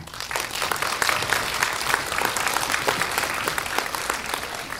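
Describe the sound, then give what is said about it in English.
A steady burst of audience applause at a festival event at the Rio Theater, dense overlapping hand claps that stay loud and even throughout with no talking over them. “Two more big chances to clap in the next 15 seconds.”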